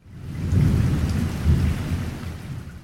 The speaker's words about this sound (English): Another crack of thunder shook the window.